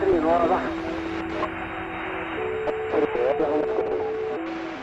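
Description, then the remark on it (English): Scanner-style maritime radio transmission picked up by scanners on a boat travelling around the Mediterranean Sea: a thin, band-limited voice comes through under a steady electronic hum, with held tones shifting pitch and brief dropouts in the hiss across the few seconds. “they captured over 1,500 hours of fishermen's radio conversations, passing yachts on the coast, and Morse code communications”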